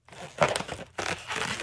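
A rubber balloon is stretched and twisted into a heart shape by a balloon artist, giving off bursts of squeaky, crinkling rubbing in two main stretches with a short pause between them, fairly quiet and with no talking.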